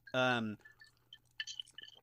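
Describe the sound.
Ice cubes clink lightly against a glass in a few quick, bright taps near the end, following a short voiced sound at the start. The clinks are fairly soft.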